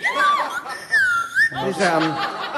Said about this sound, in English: That's right, and so tonight we're going to use some of the most rare and difficult of the handcrafted instruments. Yeah. Ladies and gentlemen, the whistle pop. Wow, the whistle pop family is in.